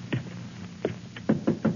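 Heavy, booming blows strike the wooden outer door of a dilapidated mansion at 9 o'clock: a single thud, a pause, then a quick cluster of four loud, insistent knocks. The pounding is forceful, with no voices.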